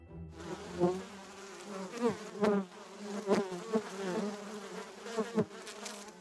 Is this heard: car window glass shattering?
no